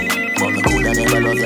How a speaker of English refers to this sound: I can never answer your phone. Answer your phone, dog.